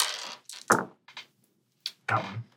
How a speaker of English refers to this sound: Make a dice pool of all your unspent willpower, which is four black dice. Let's get at least one success on this roll.